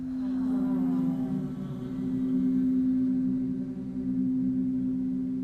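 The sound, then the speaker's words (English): A single steady hum sung on an exhale during a guided breathing exercise, held for several seconds, low-pitched and resonant, fairly loud with no speech, holding an even tone throughout with slight swells in volume. “As you watch the breath, let's sing hum together.”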